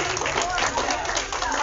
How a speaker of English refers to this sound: Give God a good hand clap of praise for the decision that was made this morning.